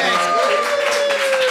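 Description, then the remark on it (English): A brief, steady round of applause from a group for Kirsty Young, dense clapping filling the moment at an even level, with a faint sustained tone running underneath. “A round of applause.”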